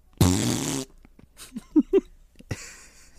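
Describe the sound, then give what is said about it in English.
A long, loud, buzzing fart opens the sequence, followed by a few short squeaky toots and a final raspy burst, all without any talking. “Like, farting? He's farting?”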